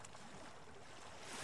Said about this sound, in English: The sea splashed with reasonable energy against the rocks